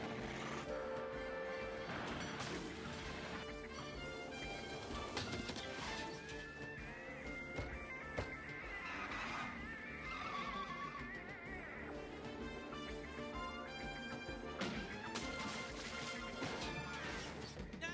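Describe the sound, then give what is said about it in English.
A loud, dense 1980s-style action movie car chase: pounding orchestral score layered over roaring engines and sharp crashes and impacts, continuous, with no one speaking. “Super 80s kind of action car chase.”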